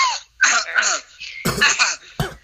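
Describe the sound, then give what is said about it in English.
A person clears their throat and gives several short, raspy coughs in quick succession, with brief pauses between the bursts. “Cough, cough, wink, wink, nudge, nudge.”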